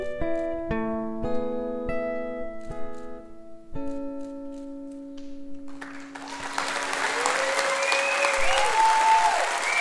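Final sustained notes of a song ring out and fade, then an audience breaks into loud, steady applause for the last few seconds, with a few high whistles cutting through the clapping.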